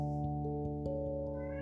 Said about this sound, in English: Stop it. No more meowing.